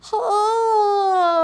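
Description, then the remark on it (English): A big open-mouthed yawn voiced aloud during a voice relaxation exercise, as one long, loud, sustained tone that starts with a brief breathy onset and slowly sinks in pitch, with no talking. “Now let's really make big mouth, yawn.”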